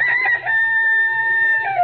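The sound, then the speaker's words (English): A rooster crows loudly, one long sustained cock-a-doodle-doo that holds steady before dropping off at the end, with no one talking. “events of the world through the eyes of a rooster.”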